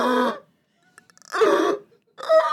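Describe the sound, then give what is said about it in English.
A voice imitates desperate gasping for air: three strained, breathy vocal bursts separated by short pauses, fairly loud, with faint clicks between them and no words spoken. “And like get some air in and start breathing.”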